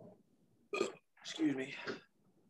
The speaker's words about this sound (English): Excuse me. Burped twice on a podcast in people's ears. This is the third time. This is bad. I should have grabbed something else to eat.